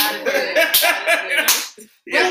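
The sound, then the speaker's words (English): Hands clap in a quick, steady rhythm, sharp smacks repeating about every quarter second over a dense tonal backdrop, stopping briefly near the end before picking up again. “Clap your hands.”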